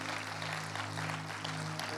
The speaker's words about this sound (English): Amen, can you give that person just a clap? That's amazing.